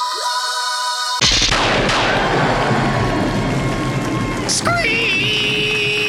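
Shine's car from Psycho Bonkers number one screeching in for a landing: a steady high whine, then a sudden loud crashing, roaring rush of noise, ending with a bright pitched screech that slides downward and holds.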